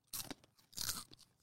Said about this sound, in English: I'm trying to chew right on the mic. It doesn't taste good. No, they're not. It's too dried.